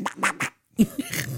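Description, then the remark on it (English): A person imitates Donald Duck's voice: raspy, buzzy squawks in three quick bursts, a brief pause, then a longer garbled run of nasal quacking. “Like, actually talk like Donald Duck, yeah. Now I just do the noise.”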